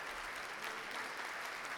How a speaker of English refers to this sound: …, satisfied that … have completed another urgent, uninhibited exchange in what he calls the oldest language, leads his interpreters from the stage. The Crucible audience rises as one, sending them off to rapturous applause.